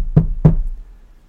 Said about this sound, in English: He's knocking at the door.